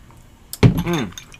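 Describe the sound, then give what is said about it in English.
Glasses clink together once in a toast, held close to the microphone, sharp and bright, followed by a short burst of a voice. “Let's get it close to the mic, dude. Right here. There you go. Toast.”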